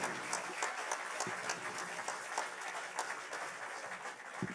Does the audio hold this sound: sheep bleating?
no